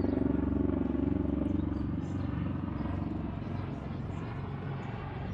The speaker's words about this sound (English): Look at that. That's a cool ass plane.